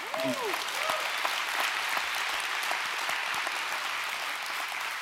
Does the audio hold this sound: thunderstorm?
no